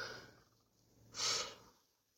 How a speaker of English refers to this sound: I'm sorry for the yawning, guys.